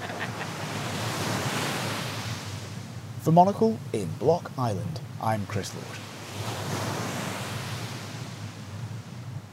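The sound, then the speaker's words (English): Ocean waves break and wash continuously onto a beach at low tide in July, a broad hissing surf that swells and eases, with a man briefly speaking over it midway through. “You can barely see the waves coming, you know.”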